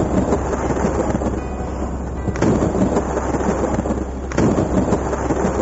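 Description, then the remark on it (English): A thunderstorm at night roars with heavy, steady rain blowing down in sheets and gusting wind, deep rumbles rolling underneath and sharp bursts of noise swelling around two and four seconds; no voices, loud throughout. “The rain blew down in sheets and rolled off the dead man's face like tears.”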